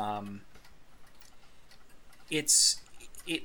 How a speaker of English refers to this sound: The ticking or clicking or ticking noise is getting very loud now. It's sort of a dull roar of clicking.